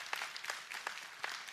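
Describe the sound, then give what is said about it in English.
A scattering of audience claps, a handful of sharp, irregular hand claps over a soft rustling background, fairly quiet and with no voices. “Was that a clap?”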